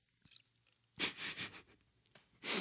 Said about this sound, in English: I'm drinking a little oat milk double latte, creamy and balanced. I'm going to sip some right now because I'm loving it.